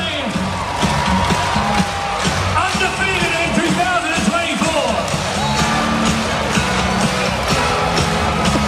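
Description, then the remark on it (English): A basketball arena crowd roars and cheers steadily at full volume after the Adelaide 36ers beat Melbourne United 100 to 95, a dense wall of voices with whoops and shouts rising above it, and an organ or music faintly underneath. “Have a listen to this crowd.”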